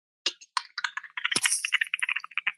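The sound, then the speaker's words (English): A rapid series of crisp mouth clicks, fairly loud, rattling along in an irregular rhythm that closely imitates someone typing on a keyboard. No one speaks. “No, that was actually my mouth. I was going, sounded like typing though, didn't it?”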